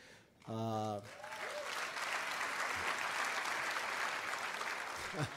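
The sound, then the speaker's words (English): An audience breaks into steady, sustained applause lasting several seconds, preceded by a brief voiced shout; the clapping stays dense and even in loudness until the end. “I don't know if you're applauding them or because I live to see it, but, and both.”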